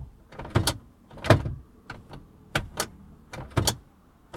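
A car storage compartment, worked by a single button that both opens and closes it, opens and closes several times in quick succession, each cycle a mechanical click and short whirring slide, with no voices.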